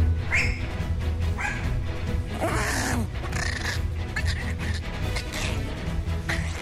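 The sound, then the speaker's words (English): A dog lets out a strange, warbling whimper-howl in repeated wavering bursts, fairly loud over a low steady hum, with a sharper yelp-like rise in the middle. “That's not a dog sound. No, it's not. That is some kind of alien being. What dog does that?”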